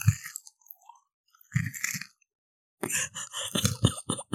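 Crunching of a crisp Butterfinger candy bar being chewed, in three bursts of loud, crackly bites separated by short pauses, the last burst busier and more rapid.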